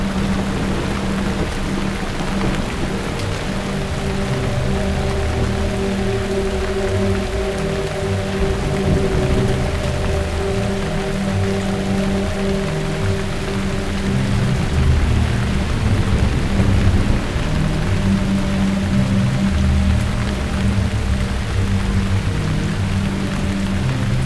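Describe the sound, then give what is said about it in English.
A steady, heavy rainstorm pours continuously with deep thunder rumbling beneath, while a few sustained low tones hum underneath the downpour; no voices are heard. “As regards the voices, we decided to place the vocal music on just before the storm, just before the tragedy, big tragedy.”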